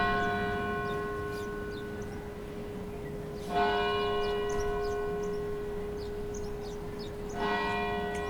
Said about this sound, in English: The Old South Church bells tolled as thousands of people, standing shoulder to shoulder on Boylston Street, paused.